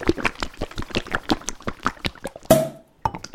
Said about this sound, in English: Let me just uncork it here.